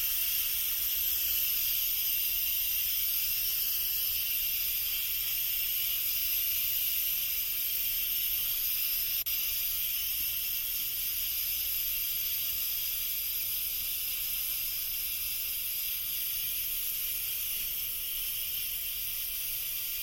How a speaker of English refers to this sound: That's a lot of steam. Yeah, it is. Right? Holy crap! That's really cool. Can you see the steam coming out of the top?